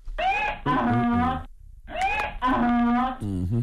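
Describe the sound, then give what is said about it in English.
A donkey sound effect: a loud hee-haw twice in a row, each bray a harsh, wheezing rise and fall with a strained, nasal tone, followed by a short trailing grunt. “Yeah, please give him the biggest hee-haw.”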